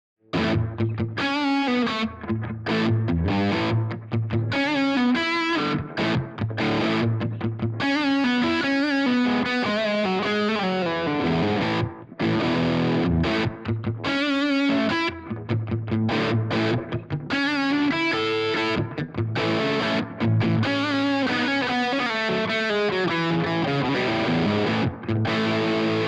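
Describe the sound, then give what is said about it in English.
An electric guitar, a Gibson Les Paul Standard, played through a Maxon SD9 Sonic Distortion pedal into the Marshall setting of a Strymon Iridium amp modeler, chugging chords and riffs loud for nearly half a minute, with a few brief breaks and no voices. “I'm now using the Maxon SD9 Sonic Distortion along with the Strymon Al Cappy stand. That's using the Marshall setting on the Iridium.”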